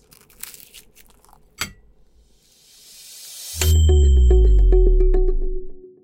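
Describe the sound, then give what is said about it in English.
A few crisp crunching bites with a sharp snap, then a rising whoosh swells into a loud, sustained deep musical chord that fades out. No talking. “Okay, one more bite and I'm out the door.”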